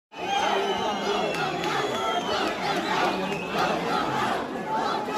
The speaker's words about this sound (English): So the yelling you're hearing there is "Vote them out." Parents at that meeting were apparently upset over LGBTQ-themed books.